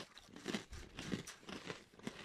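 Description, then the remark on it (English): Crunching of a handful of Sriracha Cheez-It snack mix being chewed, with steady bursts of crisp crackling roughly every half second and no talking. “Nice crunch right here.”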